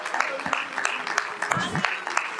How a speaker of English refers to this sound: Let's give the Lord a great hand clap of praise. Oh, isn't he wonderful?